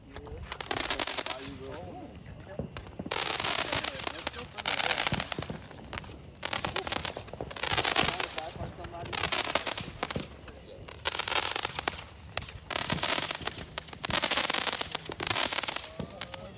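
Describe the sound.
Rapid bursts of firecrackers and fireworks, set off by a group of roommates on the 4th of July, crackle and pop in dense, repeated volleys, loud, with short pauses between bursts and a few voices in the background.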